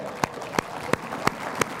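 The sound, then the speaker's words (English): An audience at a Living Word and Mark Barkley Ministries service claps in unison after saying amen, five sharp, evenly spaced claps at a steady rhythm over a murmuring crowd noise bed, moderately loud. “In Jesus' name, say amen and clap real good.”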